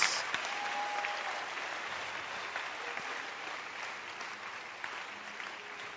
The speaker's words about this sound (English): Can you clap your hand for an upgrade of your status?